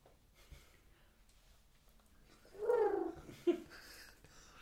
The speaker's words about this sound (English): Fuck off, pigeon.